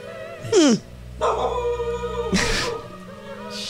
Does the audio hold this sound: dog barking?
yes